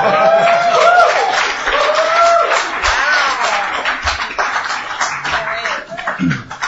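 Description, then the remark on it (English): A crowd of government lawyers bursts into sustained, dense applause, with cheering and whoops mixed in, steady and loud for several seconds before beginning to thin out at the end. “Can I just say that the number of, you know, government lawyers who are clapping at that is itself a very striking thing.”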